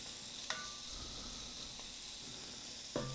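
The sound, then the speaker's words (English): Steady sizzling hiss of carrots frying in a pan as they cook down and soften for a sauce, with a few sharp clinks of a utensil against the pan at the start and end. No voices. “So while we're cooking that, couple comments.”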